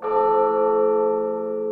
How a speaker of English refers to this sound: The person look at the bells, and for a moment, they are just in peace. The sound is, it fills the room.